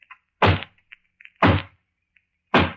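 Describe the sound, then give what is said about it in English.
Three slow, heavy knocks on a front door, made as a sound effect demonstration, each a loud hollow thud with a deep booming body, spaced about a second apart. Faint small clicks sound between them, and no one speaks. “And then there's the hollow knock on the front door.”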